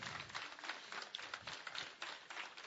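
Steady audience applause in thanks to the helpers and sound crew, a dense wash of many hands clapping at a fairly even level for a few seconds, with no voices standing out.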